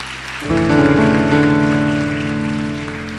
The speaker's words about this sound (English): Wonderful, wonderful. Clap your hands for them, please.